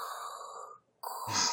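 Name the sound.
heavy breathing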